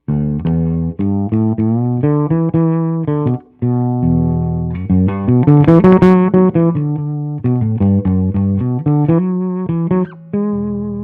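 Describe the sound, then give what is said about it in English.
An electric bass with its stock 1970 Fender Precision pickup, not swapped for a DiMarzio, plays a steady, loud run of plucked notes with full low tones and rich overtones. A brief harsher, denser passage sits in the middle. No one speaks. “I kept the stock Fender Precision pickup, 1970 pickup in there, and this is how it sounds.”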